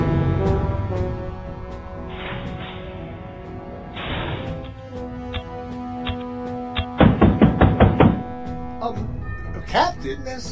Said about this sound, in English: Someone knocking on the door. Yeah, well, we better answer it then.